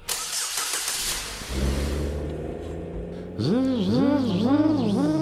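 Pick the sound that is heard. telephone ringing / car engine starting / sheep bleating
car engine starting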